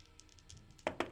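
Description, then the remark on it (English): A couple of sharp, hard clicks in quick succession as new pink dice clatter onto a tabletop, rolling a natural 20, distinct against a quiet, faintly noisy background with no talking. “Natural 20! Holy free holy. New dice. On my new dice, on too.”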